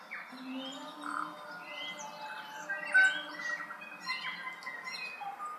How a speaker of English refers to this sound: And lots of sort of natural bird sounds to create a bit of a vibe.